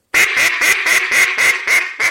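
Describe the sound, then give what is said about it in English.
A duck call blown in a steady series of about eight loud, raspy quacks, evenly spaced, with no talking; a caller blowing a practice quack sequence for a lesson. “So just blow your five duck or your six.”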